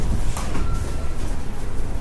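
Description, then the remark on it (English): A bus pulls up at a bus stop, its heavy engine rumbling low and steady, with a brief hissing burst early on and a faint whine drifting over the drone. No one speaks. “Talking about bus stops, here's the bus.”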